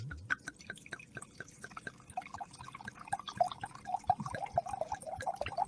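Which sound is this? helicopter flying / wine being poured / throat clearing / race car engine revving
wine being poured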